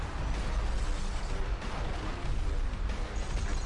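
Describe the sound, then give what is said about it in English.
A building collapses amid explosions in a trailer for the Xbox One game Crackdown: a loud, continuous low rumble with crackling debris and repeated bursts throughout, dense, with no voices. “Well, they knocked that building down.”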